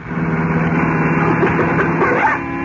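A car engine roars loudly and continuously as the car is driven as fast as possible, its steady droning hum pushing slightly higher as it speeds up, with no voices over it.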